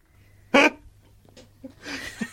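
A puppy named Billie Jean tears and rips at cardboard, with a sharp loud burst followed by quieter scuffling and a longer papery shredding sound toward the end.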